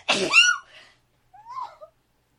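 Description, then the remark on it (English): A single loud human sneeze erupts in a sharp breathy burst, followed after a short pause by a soft, brief vocal murmur. “I'm gonna sneeze.”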